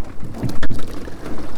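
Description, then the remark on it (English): Oars of a rowing boat dip and pull through water in a steady rowing rhythm, a brief splashy surge standing out midway, all over a constant rushing wash of wind and water noise. “Yeah, you can hear that we've kind of settled into a good rhythm.”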